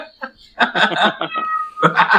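A frightened cat yowls in several loud, wavering cries, one stretched into a long drawn-out wail before a final burst, with brief gaps between them.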